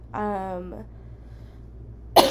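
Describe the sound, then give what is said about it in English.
A strained voiced sound is followed after a pause by a sharp, harsh cough burst at the end, from a sick person in the middle of a coughing bout. “I have these nasty coughs, as you can hear.”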